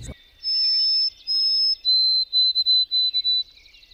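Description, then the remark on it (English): A Canadian bird's clear, high whistled song, fitting the mnemonic 'oh, Canada, Canada, Canada': two long steady notes, then a slightly lower series of shorter repeated notes in a quick even rhythm, with no other sound around it. “It's a whistle, but the mnemonic, if you hear, it's a whistle, it's a song, but if you listen to the song and you put in the mnemonic, oh, Canada, Canada, Canada, Canada, oh, Canada, Canada, it's a whistle.”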